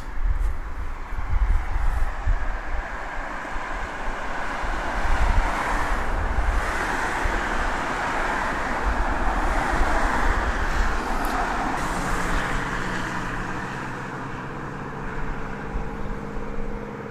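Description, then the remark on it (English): Steady roar of heavy traffic on a major A road, heard from the top of a pedestrian footbridge, with cars sweeping past in overlapping whooshes and a low rumble underneath, plus some wind buffeting; no one speaks. “we're standing on the top of a pedestrian footbridge over a major A road”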